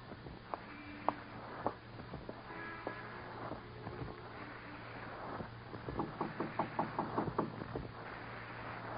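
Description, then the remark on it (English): Knocking on a door in a vestibule: a few scattered raps, then a quicker run of about seven or eight knocks, heard over a steady low hum and wind-like background noise. “Go in that vestibule and knock on the door.”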